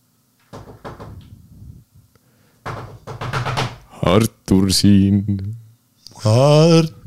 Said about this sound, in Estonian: Ja kui lõpetasin, siis oli koputus uksel.